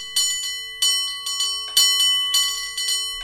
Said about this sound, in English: I think we hear the ferry building chimes twice.